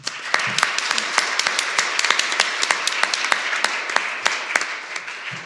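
An audience applauds steadily, dense overlapping claps forming a broad wash with sharper individual claps popping out irregularly throughout, moderately loud and sustained without any talking. The applause thanks a person who helped create a panel on migrant detention, part of a lecture series on mass incarceration.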